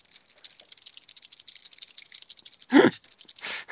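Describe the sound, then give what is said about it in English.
The loose plastic knee joints of childhood action figures rattle and click in a rapid, uneven stream as they are moved in a ninja kick, with a louder clattering burst near the end and a brief shake after it. No voices. “Let's have a symphony of loose knees. Ninja kick action.”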